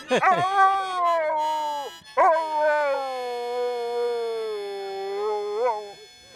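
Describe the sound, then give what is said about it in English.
Otis, an Akita and Chow mix dog from Littleton, New Hampshire, howls in two long, sustained notes, the first short and the second drawn out with gentle wavers and rises in pitch, loud and alone with no talking. “He is, I guess, an Akita and Chow mix and whatever else he could possibly be.”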